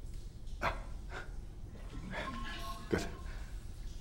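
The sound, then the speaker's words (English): A person imitates a dog barking the Dutch way, "waf waf", with a few short, sharp bark-like bursts spaced irregularly over a few seconds, moderately loud against a low background hum. “You know how a dog barks in Dutch.”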